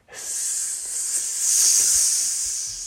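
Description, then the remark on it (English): A voice imitates Parseltongue, the snake language from the Harry Potter films, with one long, continuous hiss lasting about three seconds, bright and airy, swelling slightly louder midway before easing off. No other talking. “In the film, they would have had to go, how does parcel tongue sound? Yeah. We've come up with some examples.”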